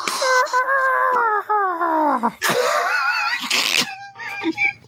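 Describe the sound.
Several voices imitate sound effects at once: a long, wavering falling scream that slides downward in pitch, imitating Spidey's scream as he falls, overlapping vocal whooshing for a rocket board and punchy vocal punching bursts, then a few short strained vocal squeaks at the end.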